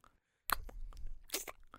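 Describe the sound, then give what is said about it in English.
A voice imitates wet kissing and gum-chewing as dubbed (ADR) making-out noises in a film: a loud burst of smacking, squelching mouth noises that runs for just over a second, with no words spoken. “I hate ADR making out noises. Yeah. It's always like”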